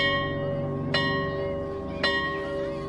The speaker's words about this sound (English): And, of course, everybody started to head towards the door, and the teacher said, sit down, it's not recess yet, and a few minutes later the bell went off.